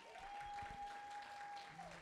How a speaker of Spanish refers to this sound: Un aplauso más fuerte para Dios.